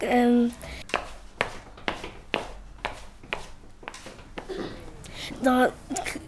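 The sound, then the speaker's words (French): Imitated footsteps on stairs, made with the feet in a large hall: a steady run of about a dozen sharp, dull thuds evenly paced, with short voiced bursts at the start and near the end. “Les bruits de pas...”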